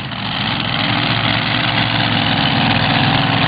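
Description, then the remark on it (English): A loud, steady rumble of a pulling tractor's twin Hemi engines idling, dense and continuous with a faint vibrating throb and no voices over it. “This is a new combo for him with the twin Hemis.”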